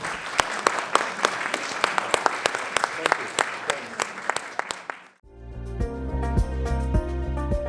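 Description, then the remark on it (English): A crowd at a session claps steadily for about five seconds for the colleagues up on stage, a dense patter of many hands with sharp individual claps standing out, then it cuts off and tonal music with a steady beat takes over. “Can we just give a round of applause to our colleagues up here?”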